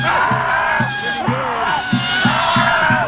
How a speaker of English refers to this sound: And they said, we need to relieve the stress. We need to start yelling at the sky to protest Trump. This is what it sounded like.